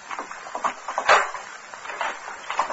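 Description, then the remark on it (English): A door is opened, with creaking and scraping scuffs across a few seconds and one sharper clunk near the middle. No one speaks. “All right, open the door.”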